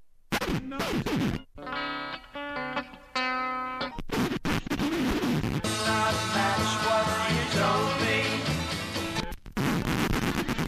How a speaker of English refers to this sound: Put the scream in. Absolutely.